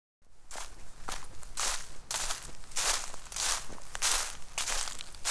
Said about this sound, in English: She gathered up her tarp and blanket and stomped up the hill with a scowl on her face.